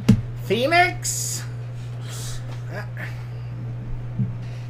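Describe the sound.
A single sneeze near the start: a rising voiced intake snapping into a sharp, hissing burst, followed by a few faint vocal sounds over a steady low electrical hum.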